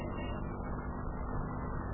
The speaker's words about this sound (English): Well, here comes the professor's car. See the fox tail hanging from the radio antenna?